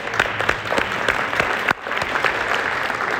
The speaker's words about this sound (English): They're clapping with excitement that you're leaving.